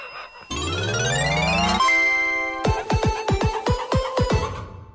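A bell rings in a rapid run of about eight bright strikes, preceded by a rising swooping tone and a brief sustained chime. No one speaks.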